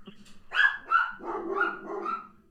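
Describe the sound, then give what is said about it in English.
Dogs bark in a quick, overlapping volley: two sharp, loud barks, then a stretch of continuous barking and yipping. “Dogs like green energy too.”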